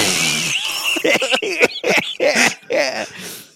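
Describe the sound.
Someone makes mouth fart noises: one long buzzy raspberry, then a string of shorter sputtering bursts with a wobbling, whiny pitch, fairly loud and with no talking over them.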